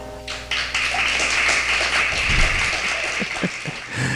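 An audience breaks into steady applause, a dense, crackling wash of many hands clapping at once that swells in and holds at an even, fairly loud level for several seconds, with no voices.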